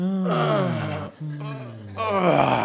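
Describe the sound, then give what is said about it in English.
A drawn-out vocal groan, an old-person noise made while thinking, low and wavering, broken by a brief pause, then a second sustained moan followed by a rising, strained sigh-like sound. No words are spoken. “I find myself making old people noises while thinking.”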